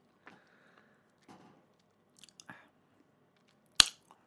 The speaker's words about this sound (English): You just caught me chewing. Yeah, I know. I tried to catch it on mic, but you wouldn't have it.